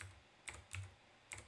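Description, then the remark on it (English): Three distinct computer keyboard key presses, sharp plastic clicks spaced irregularly over a quiet background hum, fairly soft with no one talking, as the keys are used to move a character in a simulator. “And I'm just using the keyboard keys, but you can also use this joystick in the simulator if you want.”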